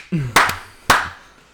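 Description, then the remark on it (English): A group claps together in unison on a count of three, giving two or three loud, sharp, slightly smeared claps with a short gap between them. A brief vocal sound comes just before the first clap. “All right, we're gonna clap on three.”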